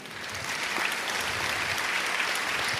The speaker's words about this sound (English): So we can celebrate and clap for a baby being born and what that would mean.